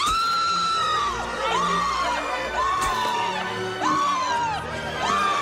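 A man screams excitedly after being announced as an astronaut and crew member of a manned mission to Mars, in a series of high, loud whooping cries, about five rising-and-falling shrieks in quick succession, unrelenting, with faint crowd noise beneath.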